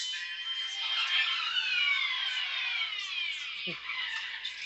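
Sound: police car sirens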